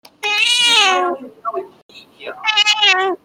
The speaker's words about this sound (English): Fluffy is just meowing over here. Hey, Fluffy.